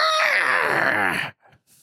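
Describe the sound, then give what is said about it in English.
A person imitates a screech with a single loud, harsh, strained cry lasting over a second, its pitch sliding downward and wavering before cutting off abruptly into near silence. “She lets out a screech.”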